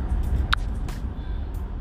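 Steady low engine and road rumble fills the inside of a moving car, with a short squeak or click partway through and no voices.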